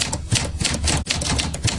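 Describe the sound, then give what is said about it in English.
Rapid, steady typewriter clacking: a dense run of sharp, bright key strikes with a brief pause near the middle, fairly loud and with no voices. “I mean, you got the typewriter sound effect?”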